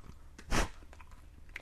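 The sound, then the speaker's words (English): Chewing of a stale, expired snack that is supposed to be crunchy but is not: one loud bite near the start, followed by a few quieter, soft chewing noises, with no one talking. “I have a feeling they're supposed to be crunchy, and they are not.”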